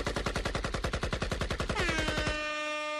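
A loud, rapid burst of gunfire sound effect, shots firing in a fast steady rhythm for about two seconds before giving way to a sustained ringing tone that lingers to the end.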